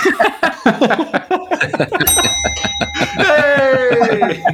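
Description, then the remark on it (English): A single bright bell ding sound effect strikes midway and rings on with a sustained shimmering tone while several people keep talking and chuckling over it. “just as a side note, can we have a bell every time”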